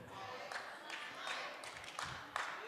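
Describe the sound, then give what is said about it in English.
A few scattered hand claps from an audience, about six irregular soft slaps spread over a couple of seconds, faint against a low murmur of voices. “I appreciate the hand clap here and the hand clap there and the hand clap there.”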